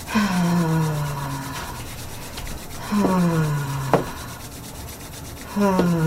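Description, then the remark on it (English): Hands rub briskly together, a steady dry swishing friction that surges in three strokes with brief squeaky tones sliding downward. There is no talking. “Okay, rub your hands together.”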